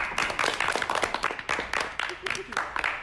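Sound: people clapping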